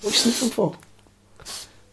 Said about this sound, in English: What are you sniffing for? Stop sniffing.